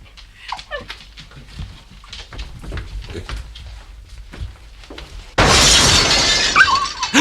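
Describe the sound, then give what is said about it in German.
A dog whimpers and yelps for several seconds, then a sudden, loud crash as a chair is thrown through a first-floor glass front onto the street, with breaking glass and debris ringing on until the end. No one speaks. “einen Stuhl genommen und ihn durch die Glasfront aus dem ersten Stock auf die Straße geworfen.”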